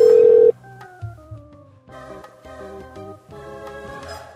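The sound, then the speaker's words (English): A telephone being dialed: a loud steady tone cuts off, then a quick run of electronic keypad beeps follows in an uneven rhythm, clear, with no one talking. “We can't spend all day just ringing people.”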